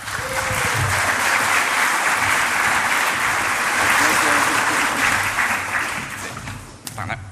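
A crowd claps to welcome the next speaker of a talk, in a dense, sustained burst of applause that holds loud throughout, then thins and tapers off near the end.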